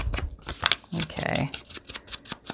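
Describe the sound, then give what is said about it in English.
Dry, crisp rustling and scraping of a tea-dyed paper index card being handled, in short irregular bursts with a brief murmur of voice in the middle. “This is a, I think this is a tea-dyed piece of paper. Yep. A tea-dyed index card.”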